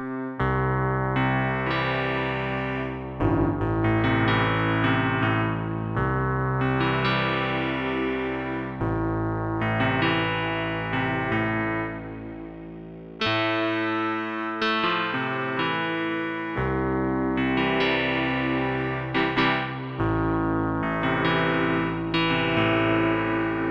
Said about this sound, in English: Cool, a little bit distorted, but nice. Lo-fi keys.